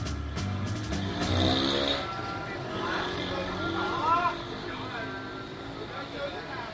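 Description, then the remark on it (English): A small moped engine revs with a rising, buzzing whine for about two seconds as a rider sets off on a Sunday morning in Vietnam, then settles into a steady running drone with muffled voices and street noise around it. “I set off by moped in search of a popular waterfall.”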